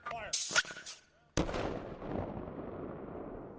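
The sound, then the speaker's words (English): An avalanche control cannon fires in the morning on a mountain above Ketchum, Idaho, used by the Sun Valley ski patrol to test the snowpack: a single sharp, heavy boom, its echoing rumble rolling across the mountainside and slowly fading. Brief cracking bursts come just before the main blast. “Mountain mornings above Ketchum, Idaho, often begin with cannon fire.”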